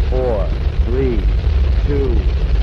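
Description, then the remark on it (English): A rocket's engines roar at ignition in a steady, loud, low rumble that fills the whole clip, with a few short, faint voice-like tones rising briefly above the noise. “We have ignition sequence start. The engines are on.”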